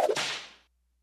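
A single sharp whip crack, loud, with a bright swishing snap that trails off quickly into silence.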